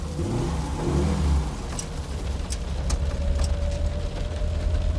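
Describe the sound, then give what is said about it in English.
A car engine, Freddy's car with a canvas top, rumbles and revs, then settles into a steady, loud drone as it accelerates, with a faint rising whine running through it, as a violent tropical storm makes landfall. No one speaks. “When it makes landfall, he hops in Freddy's car, determined to make the journey.”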